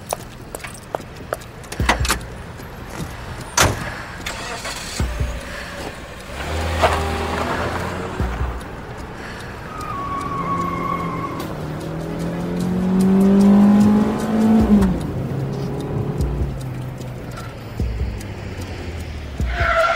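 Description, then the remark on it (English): A car engine revs and accelerates as the car is pulled around to the front, tires squealing briefly as it swings around, then the motor climbs in pitch and pulls away, with a few clanks and jangles early on. “All right, get the car, pull it around front.”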